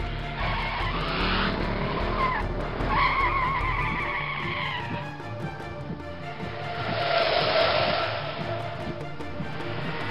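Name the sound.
car tires skidding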